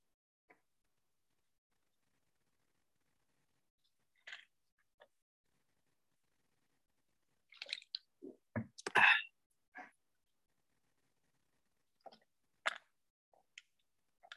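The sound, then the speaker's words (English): Someone takes a drink of water: soft sips and gulping swallows clustered in the middle, with scattered quiet mouth clicks before and after, and no talking. “Let me grab a quick drink of water.”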